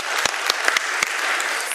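An audience applauds, a dense, steady wash of many hands clapping with a few sharper individual claps cutting through. No one speaks over it.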